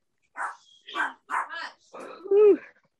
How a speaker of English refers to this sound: So my dog is barking.